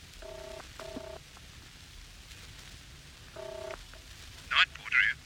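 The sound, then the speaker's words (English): Short electronic dial tones beep out as a telephone number is keyed in, in a few quick clusters, then two brief bright rings sound with no answer, over a soft, hissy background. “I just had to phone David. But there was no reply.”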